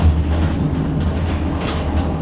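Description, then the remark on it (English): A night sleeper train travelling from northern Vietnam near the Chinese border to Hanoi rolls steadily along the rails with a continuous low rumble and faint rhythmic clatter, with no one speaking. “Yes, it's a night train. A night train from the north of Vietnam, from the border to China, to Hanoi.”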